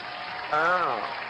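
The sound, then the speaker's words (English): A short burst of an applause sound effect, clapping noise steady and fairly loud, with a voice briefly calling out over it partway through. “So we have to make sure to put some applause and burp noises”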